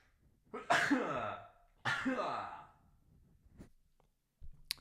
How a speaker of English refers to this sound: I'm going to sneeze and it's probably going to be extremely loud.